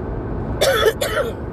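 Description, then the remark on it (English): A person coughs twice in quick succession, fairly loud, with a low steady rumble in the background and no talking. “oh, and another truth is this cough is back, by the way.”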